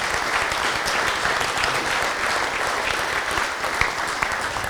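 A round of applause from an audience at an evening gathering: dense, steady clapping that stays loud and even throughout, with no voices rising above it.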